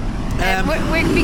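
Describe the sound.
A tractor's engine rumbles steadily in Ireland, a deep continuous drone that fills the whole moment, with a voice talking briefly over it.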